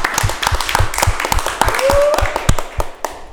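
A small group of people claps, sharp uneven claps filling a few seconds, with a short rising whoop or whistle cutting through partway, welcoming a guest back on the 804 RVA show.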